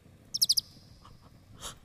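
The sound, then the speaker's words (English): A quick burst of four bright, high-pitched bird chirps in fast succession in a stage play, followed by a softer breathy rustle, with no one speaking. “Then, she hears a bird chirp.”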